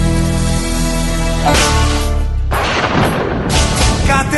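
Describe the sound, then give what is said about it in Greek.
Loud, booming thunder rumbles and cracks in three heavy bursts about a second apart on a rainy day, following a steady tonal hum at the start. “Καλημέρα, καλώς ήρθατε και σήμερα σε βροχερό mood σήμερα. Του κεραυνού το κάγκελο γίνεται.”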